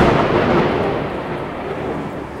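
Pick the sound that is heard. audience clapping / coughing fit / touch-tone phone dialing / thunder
thunder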